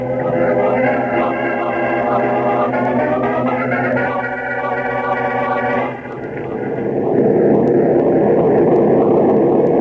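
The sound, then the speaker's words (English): A loud, steady drone of an airplane engine in flight, flying toward New York with a tailwind about an hour out, humming continuously with a layered tone, then shifting partway through into a rougher, noisier roar. No voices. “This tailwind will be in New York in about an hour, Chief.”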